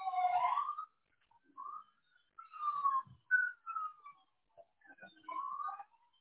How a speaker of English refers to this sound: here comes another siren.